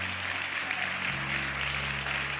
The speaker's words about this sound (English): Amen. Give God a hand clap. Thank you, Lord.